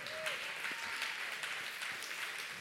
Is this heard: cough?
no